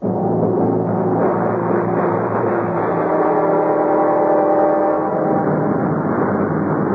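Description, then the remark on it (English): A steady, loud airplane engine drone fills the cockpit of a plane crossing the international dateline, a dense low rumble with sustained humming tones holding constant throughout, with no voices. “Now, once again, I'm sitting at the controls of the plane, crossing the international dateline, and listening to the voice.”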